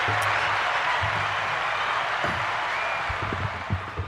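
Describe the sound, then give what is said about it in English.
Studio applause from a small group in the studio, for guests from the Forks Karting Association: a dense, steady patter of clapping hands that holds at an even level for about four seconds, thinning slightly near the end. “We'll give him a round of applause again.”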